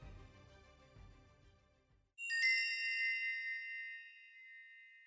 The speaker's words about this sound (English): But as the last of the gangplank vanishes to the side of the ship, bells ring, and you are underway.